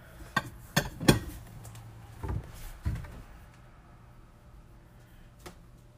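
Several sharp clinks and knocks of bowls and dishes being shifted in a cupboard while someone looks for a bigger bowl, a quick cluster early on followed by a few scattered clatters, with no talking.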